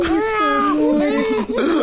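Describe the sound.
A newborn baby boy cries just after being delivered in a continuous, wavering wail. His thin, high-pitched voice rises and falls, with a brief catch for breath near the end.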